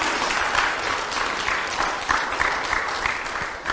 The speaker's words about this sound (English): Now I'm really concerned you get more applause than I do. I just kidding, folks.